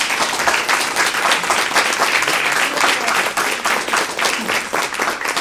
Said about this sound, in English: Can I get a round of applause for this?